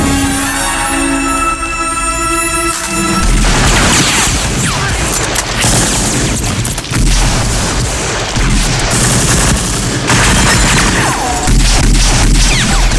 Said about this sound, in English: And speaking, this is sort of going off the violence, but something that I love about this movie so much is the sound. The sound of those gunshots.